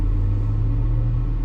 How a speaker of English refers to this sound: Sorry, I got distracted. There was a car that just like drove past me weird.